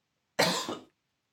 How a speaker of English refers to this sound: Bless you. No, thank you. I coughed.